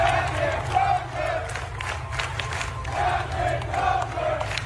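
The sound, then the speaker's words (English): A large crowd of sailors on the aircraft carrier USS Theodore Roosevelt chants their captain's name over and over as he walks off the ship, in a steady, rhythmic cadence, the loud massed voices rising and falling against a constant roar of background noise. “Those are the sailors who were serving under his command, chanting his name over and over as he made his way off the ship and onto his next assignment.”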